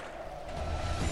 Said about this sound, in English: Sergeant Knaus can be found making waves on the water. Kayaking, you can feel the world.